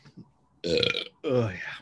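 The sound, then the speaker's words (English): Two loud burps in quick succession after drinking Coke and Pabst beer, each a rough, voiced belch lasting about half a second, with faint murmuring in the background before them. “The mixture of the Coke and the Pabst burp.”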